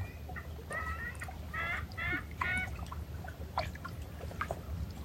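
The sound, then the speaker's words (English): Gulls call repeatedly in short, harsh bursts, several squawks in quick succession, over a steady low rumble of wind or lapping water at Lake Superior in the morning. No one speaks. “Gulls are out too.”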